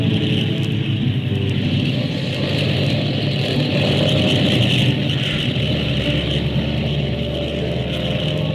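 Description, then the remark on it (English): The engines of Skyliner flight 35 roar steadily at takeoff power, a loud, continuous drone with a rushing hiss that holds throughout, its low rumble deepening partway through. No voices are heard. “Take off when ready, flight 35.”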